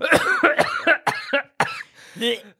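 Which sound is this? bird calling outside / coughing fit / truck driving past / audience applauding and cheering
coughing fit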